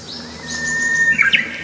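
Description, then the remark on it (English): A Japanese bush warbler sings a long, steady high whistle that swells, then breaks into a quick pair of bright, louder warbled notes at the end. “They're alive with the music of the Japanese bush warbler.”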